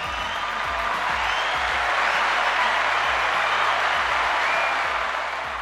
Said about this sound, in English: So a big shout out to Dave and Sal from Bisvicken Events who organised this. In fact, let's give them a really big round of applause.